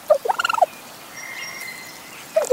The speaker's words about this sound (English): We know the whole turkey like gobble noise, but then once they start making these chirps and weird sort of dinosaur-like noises